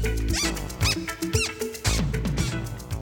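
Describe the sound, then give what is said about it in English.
Sharp, high rising squeaks of shoes come in a few quick bursts, fairly loud, over a steady musical background with no talking. “Shoes started to squeak.”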